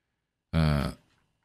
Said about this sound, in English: Burp, burp.